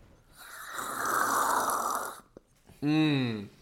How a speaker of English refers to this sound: So that is what we are enjoying right now. I feel like we're obligated to take one really loud sip, almost like ASMR.